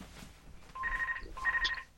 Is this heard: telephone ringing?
yes